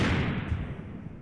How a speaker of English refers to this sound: An explosion from somewhere outside shook the room.